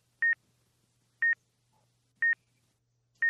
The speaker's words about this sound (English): I guess we gotta listen to it, you know. Yeah, we gotta hear it. Yeah, we gotta let it go once the beeps happen.